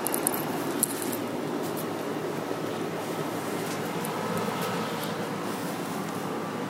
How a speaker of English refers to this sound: I can hear the compressor. There's a unique buzzing sound the compressor makes when it's running.